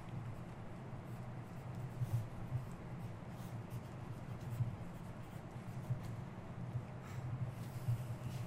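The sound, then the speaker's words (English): Faint scratching of a pen circling an answer on paper, a few soft strokes in small loops over a steady low background hum, quiet, with no one talking. “Circling it so you know which one it is. I'm using the same paper.”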